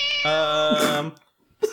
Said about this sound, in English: It does say ASMR cats 12 hours long. Oh, no. I worry that those cats are going to be too loud and it's going to be a problem.